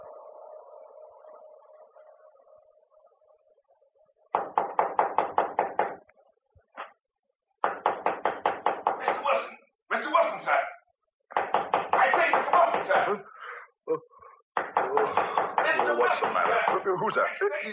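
A low steady hum, then loud, rapid knocking on a ship's cabin door at midnight, waking the sleeper inside, coming in four insistent bursts with short pauses between them, each a quick, even run of raps.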